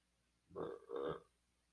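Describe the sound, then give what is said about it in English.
A throaty burp in two quick croaking pulses, back to back, loud against an otherwise quiet background with no talking. “I don't usually find burping jokes funny, but I can't stop burping.”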